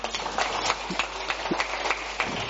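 An audience at a design talk applauding to answer a survey about the UX design versus product design label debate: dense, steady clapping from many hands forms a continuous crackling wash at moderate loudness, with a few sharper individual claps standing out and no voices.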